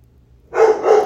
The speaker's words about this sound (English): Oh my gosh, my dog's going crazy because somebody just knocked on the door.